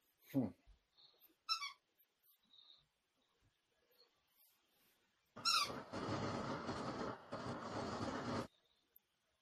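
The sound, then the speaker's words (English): A dog plays: a couple of short squeaky yips at first, then about three seconds of loud, rough scuffling and growly noise before it cuts off. “Now my dog starts to play.”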